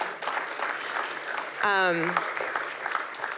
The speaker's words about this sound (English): or someone want to clap? It does feel like you should clap, right?